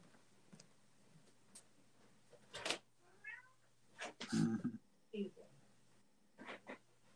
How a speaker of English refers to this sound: I'm going to quickly deal with my cat because he's whining about something.